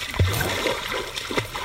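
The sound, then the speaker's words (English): Water sloshing and splashing as people wade in, with a few low swishing surges against a constant watery background. “Eventually, we all wade in.”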